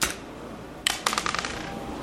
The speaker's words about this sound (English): Whoa. Hey-o. Spinning dice. Wow. Spinning dice. It's still going, guys. Spinning dice. Wow. Still.